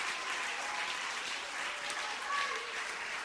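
An audience claps their hands in a dense, steady wash of applause that holds at an even level for the whole stretch, with no pauses or clear individual claps standing out.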